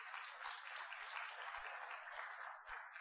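Steady applause from a crowd for a speaker, a dense wash of many hands clapping at an even level for a few seconds, with no voices over it.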